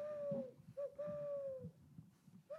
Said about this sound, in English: Is that an owl? I might be hallucinating.